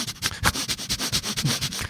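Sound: imitated dog sniffing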